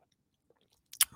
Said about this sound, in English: Let me get a sip of coffee here.